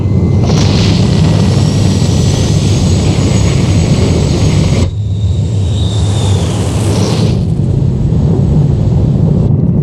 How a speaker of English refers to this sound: Oxygen pressures. 5, 4, we have an engine start. 2, 1.